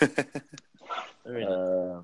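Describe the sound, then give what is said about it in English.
A dog gives a few quick, sharp barks in a rapid burst, then lets out a long, drawn-out whining yowl that holds steady for nearly a second. “Who's that dog?”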